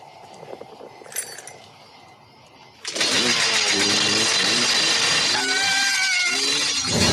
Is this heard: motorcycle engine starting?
yes